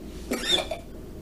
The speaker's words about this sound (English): Your vent. Not the ventilator cough.